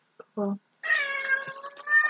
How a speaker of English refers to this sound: There was a cat!